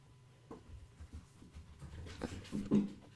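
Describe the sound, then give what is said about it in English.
A dog pants and shuffles around, with soft rhythmic breaths, small whimpery noises and rustling movement, fairly quiet overall with a slightly louder burst near the end. “Strange dog.”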